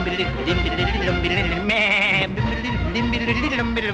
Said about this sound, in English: and all she has for company are a hen. And a dog. And a nanny goat.